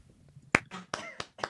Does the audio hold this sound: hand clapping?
yes